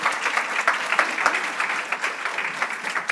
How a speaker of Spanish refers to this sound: Gloria a Dios. Un aplauso, por favor.